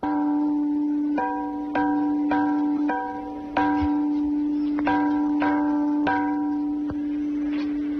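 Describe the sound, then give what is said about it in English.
A tiger-patterned stone chime struck again and again, about ten ringing strokes at an unhurried, slightly irregular pace, each giving a bright bell-like chord over a steady low sustained tone, with no talking. “Let's hear the sound that comes from the tiger-patterned stone chime.”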